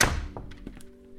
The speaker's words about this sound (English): Close the door, please.